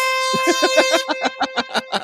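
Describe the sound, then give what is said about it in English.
A loud, blaring air horn sound effect with a rich, buzzy harmonic tone that stutters in rapid rhythmic pulses, roughly a dozen quick blasts over two seconds, with no talking. “Oh, I can't wait for that first air horn on the moon.”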